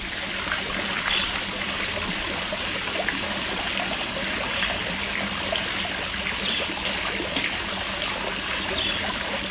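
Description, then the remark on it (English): A water fountain splashes steadily beside a swimming pool at a household in Johannesburg, a continuous trickle and patter of falling water with no pauses and no voices. “This is the water fountain next to the swimming pool.”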